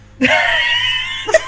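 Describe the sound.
A voice lets out a piercing, sustained screech of about a second, imitating an ear-piercing Amber Alert tone; it's loud, then breaks off into a short gasp at the end.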